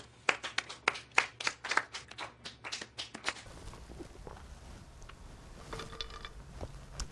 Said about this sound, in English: Functional medicine doctors for the win. Let's all start clapping.